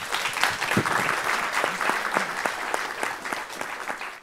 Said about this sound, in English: and also ask a round of applause and thanks for our panelists.